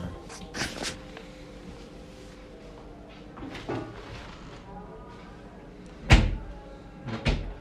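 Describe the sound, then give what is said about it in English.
A door is pushed shut with a few sharp knocks and thumps, the loudest a solid bang near the end, over a low room murmur. “You know, close the door.”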